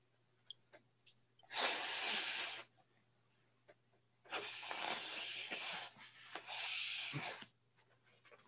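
A balloon being twisted into a balloon animal, a bird: two long bursts of loud, squeaky rubbing and rasping, separated by a pause with a few small clicks, over a low steady hum.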